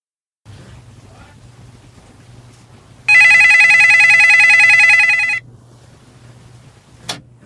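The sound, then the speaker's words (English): A telephone rings once in a single loud, sustained burst lasting a couple of seconds, set against a low steady hum, with a short sharp click shortly after. “I've just given you a wee phone.”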